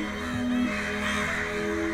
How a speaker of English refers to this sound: Oh, and there are hundreds of birds. Hundreds and hundreds of them.